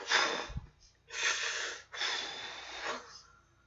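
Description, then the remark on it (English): A person mimics a forceful breathing exercise done bent over while psyching up before a somersault: three loud, rushing huffs of breath in steady succession, each about a second long with brief pauses between, and no speech. “I love how Michelle's doing breathing exercises, bent over like”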